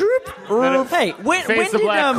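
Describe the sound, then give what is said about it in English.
A person vocally imitates a dog, producing a string of rising and falling bark-like yelps and whines in quick succession, loud, with no other sounds around it. “It's like, all we need is a record scratch sound and a dog going.”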